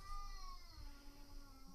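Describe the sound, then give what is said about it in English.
A cat caterwauls in one long, wavering, high-pitched wail that sounds like a screaming child, sustained and fairly quiet against a low background rumble. “That's like child screaming.”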